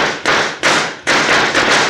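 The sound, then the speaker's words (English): A rapid series of four loud gunshots rings out, each sharp crack trailing into a rough, noisy echo before the next. The shots come close together at a steady pace, with no voices. “as Cisco and the others rush through the door, they are greeted by a barrage of bullets”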